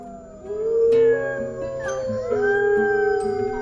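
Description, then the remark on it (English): Several wolves howl together in a sustained chorus, long wavering tones rising and gliding over one another, fairly loud, with no talking. “The caribou were stranded with a pack of hungry wolves.”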